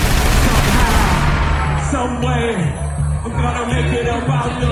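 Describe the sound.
A loud burst of shotgun gunfire sound effects, played to hype up a performance, fills the first second, dense and crackling, then fades as a crowd of overlapping voices chatters and calls out underneath.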